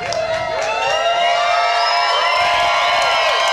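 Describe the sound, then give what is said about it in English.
A loud live crowd at the stage show Life Beginners Masterclass Live cheers and whoops continuously, with shrill rising and falling whistles cutting through the noise throughout. “Hey, we're live on stage. Your applause.”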